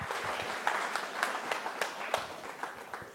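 An audience applauds as a speaker comes up to the microphone, with a dense, steady patter of many hands clapping. Sharper individual claps pop out now and then, sustained at moderate loudness with no talking.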